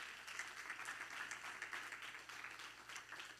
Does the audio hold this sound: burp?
no